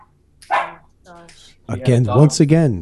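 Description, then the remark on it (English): A dog barks: a couple of short, sharp barks with brief pauses, then a louder run of drawn-out, wavering barks and yowls. “Once again, the dog knows. The dog knows.”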